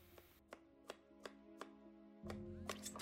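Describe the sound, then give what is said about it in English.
A knife chops carrots on a board in steady, evenly spaced strikes, a few quicker chops at the end, over a constant low background hum with no one speaking. “Oh, he's chopping carrots.”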